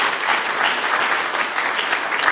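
A room full of people claps steadily, a dense, sustained round of applause from a sizable gathering, fairly close and even in volume throughout.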